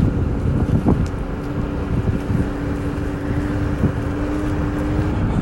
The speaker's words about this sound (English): And now we're taking a scooter through the canals to get home. It's, we are living, but I'm on a scooter, so I'm trying not to die.